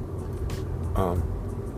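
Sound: car interior road noise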